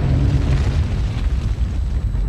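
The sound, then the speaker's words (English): A deep, sustained explosive rumble representing a supernova explosion of a star, with heavy low-end boom, loud, rolling continuously without pause for a couple of seconds. “A supernova explosion can be as bright as 4 billion stars like the sun.”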